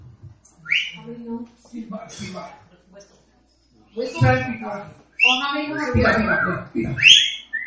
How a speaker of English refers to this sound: …. I want you to whistle. Dale, ….